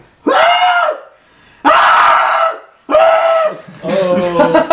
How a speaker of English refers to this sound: So he opens the door and let you in, and just as you do, you hear a blood-curdling scream coming from upstairs.